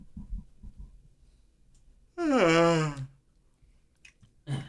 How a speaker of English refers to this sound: Yes, I did just yawn. Cutting it out.